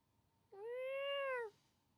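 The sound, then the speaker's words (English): A single drawn-out cat meow directed at a dog, lasting about a second, clear against a quiet background, with a steady tone that rises slightly and falls away at the end. “Just like meowed right at my dog.”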